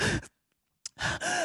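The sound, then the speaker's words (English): A voice imitates heavy, panicked breathing as if on an anonymous 911 call to the police: loud, voiced gasps, one short burst, a brief pause, then a longer ragged stretch of huffing breaths. “then all you need to do is make an anonymous call to the police, start breathing all heavy, 911.”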